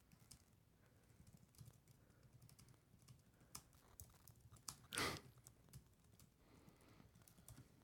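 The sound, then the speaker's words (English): Steady clatter of keys being typed on a computer keyboard while someone writes a tweet, irregular quick taps with one louder burst midway, no voices. “How are you still typing?”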